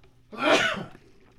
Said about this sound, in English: Oh, hold okay. On, I got to sneeze. Okay.